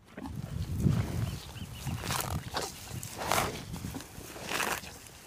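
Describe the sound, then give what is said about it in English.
Cows on a ranch pasture at Point Reyes in a national park, with low snorts and grunts and repeated crisp bursts of tearing, rustling grass, like grazing or shuffling hooves, and no talking. “The cows.”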